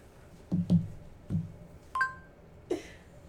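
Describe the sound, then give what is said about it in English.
A few soft, dull taps, then a short electronic beep and a brighter chime-like tone from a phone's coin-flip app flipping a coin, fairly quiet, with no one speaking. “I can have my phone pick flip a coin for us.”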